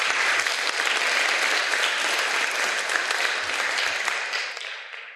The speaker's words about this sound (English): Beautiful. Give those people a round of applause, folks.